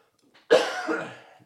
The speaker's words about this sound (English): I keep coughing. I'm sorry.